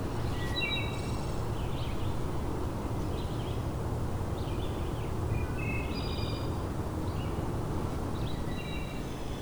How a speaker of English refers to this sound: And if you come in the early morning, quite a bit of birdsong.